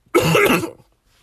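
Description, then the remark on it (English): A single harsh throat-clearing cough bursts out, lasting about half a second, then fades to near silence with no talking. “Give me a cough break.”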